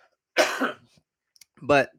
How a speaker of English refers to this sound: Excuse me, I got a cough again.